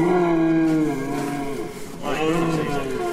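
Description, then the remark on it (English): A huge male reindeer with large antlers, kept in a barn, gives two long, low, droning grunts, rich and moo-like. The first is sustained and steady, the second starts with a rising swoop. Both are fairly loud, with no talking over them. “Yeah, he's not like a normal deer you see around this part of the world at all, is he? Those antlers.”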